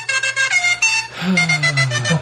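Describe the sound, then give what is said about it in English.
A loud, brassy horn honks in a quick series of short blasts, then one longer sustained honk with a slight pitch bend, clear with no talking. “It said in Espanol, so I thought it was going to say, like, hey, honk, or el honk.”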